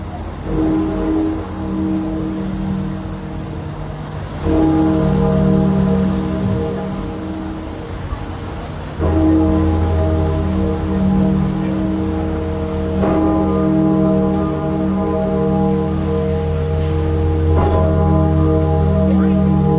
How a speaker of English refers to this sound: St. Paul's Cathedral in London. Cast in 1881 by the John Taylor & Company Bell Foundry, with a pitch of E-flat and a mast of 17,001 kilograms? I'll have to check that. And a diameter of 2.9 meters. Great Paul was the largest bell in the UK